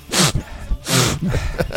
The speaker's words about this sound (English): I'm fine. You're doing all the sniffing.